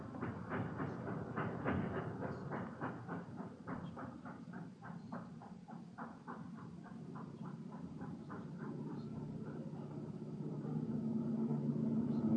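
A car with its headlights on drives on through an alley, its low engine rumble steady under a rhythmic ticking clatter that slowly fades, then the droning grows louder again toward the end.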